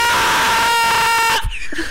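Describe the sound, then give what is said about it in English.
A loud, sustained yell rings out for over a second, then abruptly breaks off as if the signal dropped, leaving a brief crackly, garbled tail. “Okay, that one, it only cut out like a couple frames of it. So it just sounded like you were dying some horrible death.”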